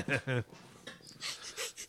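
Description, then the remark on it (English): Two short voiced grunts, then a series of four quick, breathy nasal sniffs in an uneven rhythm, each a hissing burst of air, as someone tries to clear a congested nose. “I didn't mean to make you self-conscious about your sniffles.”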